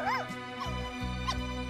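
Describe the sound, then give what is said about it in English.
A puppy gives three short, high-pitched yips, evenly spaced, over a low, steady background hum. “But we have a puppy dog.”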